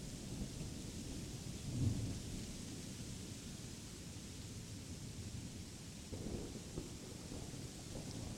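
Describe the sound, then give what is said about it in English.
A thunderstorm with steady, hissing rain and low, rolling thunder rumbling throughout, swelling briefly in a few deeper surges; no voices, just the continuous storm. “You can choose fear or love and compassion, understanding that this storm holds no power to harm you here within the visualization you've created in your imagination.”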